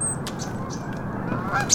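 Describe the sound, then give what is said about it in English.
A nuthatch that has landed on a person's hand in the woods gives a few short, nasal, high-pitched call notes spaced irregularly, set against a steady low outdoor rumble with no one speaking. “Landed on your hand. Bipe Goyan is... Or Bipe Gwe? Nuthatch.”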